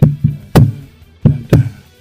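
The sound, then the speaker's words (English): Five dull thumps on a wooden table in an uneven rhythm: two softer knocks, a heavy one, then two more strong hits. Each thud is low and resonant with a quick sharp attack. “You just like thumping on the table so you can see the spikes, don't you?”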